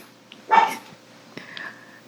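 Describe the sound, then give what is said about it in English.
A dog gives one short, sharp bark, followed a moment later by a brief, higher-pitched whining yelp; no one speaks. “we have the neighbor's dog, Samantha. And we have my brother's dog, Fluffy.”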